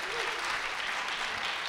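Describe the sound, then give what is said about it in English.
A church audience applauds for the many young people being baptized that morning: a dense, steady wash of many hands clapping at once with no break, fairly loud throughout the short stretch. “You can clap for that, amen?”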